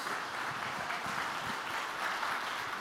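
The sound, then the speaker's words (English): An audience claps their hands together to thank God, a dense, steady wash of many overlapping claps that keeps an even loudness throughout, with no voices standing out. “I want you to clap your hands and thank God for it.”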